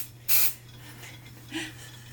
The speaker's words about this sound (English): So, I'm just going to spray it in there. Ready?